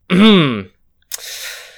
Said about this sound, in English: I think you hear a very intentional cough behind you.